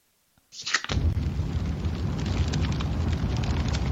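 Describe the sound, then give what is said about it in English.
A fireplace fire flares up with a sudden whoosh, then settles into a steady roar dotted with crackles and pops. No one speaks. “Fireplace.”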